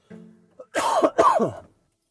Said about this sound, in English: Oh, you ever cough and your back pops? Love it.